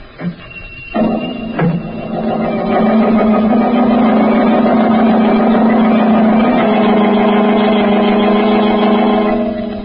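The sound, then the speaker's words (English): The Blue Beetle's speedy motor car starts up at night and its engine roars steadily at speed, a loud, continuous droning hum with no voices, holding its pitch for several seconds before easing slightly at the end. “Again, the Blue Beetle rides the night wind. In his speedy motor car, he sets out in search of the murderers of Banker Ridley.”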